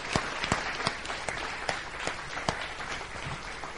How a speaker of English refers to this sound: Okay. A massive round of applause.